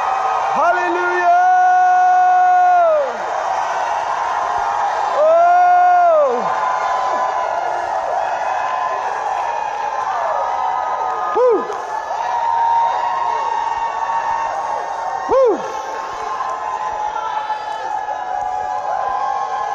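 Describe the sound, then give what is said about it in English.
A large audience shouts and cheers loudly and continuously, with long sustained yells rising above the roar and a few sharp whoops scattered through the din. “It's translated shouting. To be scriptural, this word has to reach a certain decibel level.”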